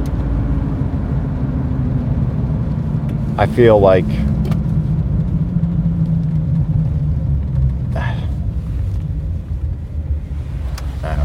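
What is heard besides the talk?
car engine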